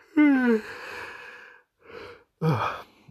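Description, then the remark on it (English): A voiced yawn with a falling pitch trails into a long breathy exhale, then a short breath and a second breathy vocal stretch. No talking. “Don't get misguided by this yawn.”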